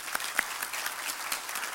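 A church audience applauds steadily in the morning to recognize a woman who was baptized, many hands clapping in a dense, continuous patter with a few sharper claps standing out; no voices are heard.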